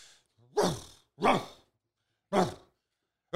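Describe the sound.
A person imitates a dog barking with three loud, breathy vocal barks spaced unevenly, then a fourth starts at the very end, each bark short.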